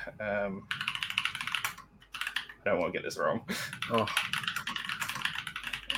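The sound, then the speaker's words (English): Rapid clacking of keys on a mechanical keyboard, fairly loud, in quick irregular bursts with brief pauses, while a man searching for a location online speaks a few words over the typing. “Love the sound of a mechanical keyboard in the it's so good.”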